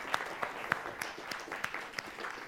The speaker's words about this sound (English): And so, you want to clap for that? Go ahead, clap for Jesus.